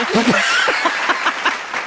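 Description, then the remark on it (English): Hesitant audience applause: a few uncertain claps under murmuring voices at first, then a steadier, moderately loud run of clapping takes hold. “like they weren't sure if they wanted to clap at first, and then they're okay.”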